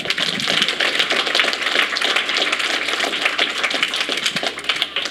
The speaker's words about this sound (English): Amen. Can we just give a hand clap?